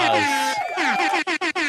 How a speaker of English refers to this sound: We give him the super, yeah, super air horn? Yeah, the mom and dad. Let's give him the super air horn. Yeah. The super horn.